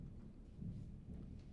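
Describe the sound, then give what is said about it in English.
A low, rolling rumble of thunder from an Alberta storm, heard with a window wide open, swells and fades steadily, with a faint hiss of rain beneath it and no voices. “Might have lit up the screen a little bit, or the window. There it is. You may have heard that.”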